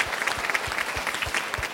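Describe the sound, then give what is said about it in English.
A crowd claps steadily, a dense patter of many hands applauding at moderate volume with no voices over it, giving a round of applause to a man who designed an alphabet book and won an award that day. “He designed the alphabet book, so let's give him a round of applause because he won an award today.”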